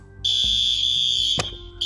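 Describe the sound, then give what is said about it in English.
A loud, shrill fire alarm blares continuously at a steady high pitch during a fire alarm test, briefly cutting out near the end before resuming, with a sharp click or thump partway through. “But I was just getting ready to change when all of a sudden, the fire alarm happened.”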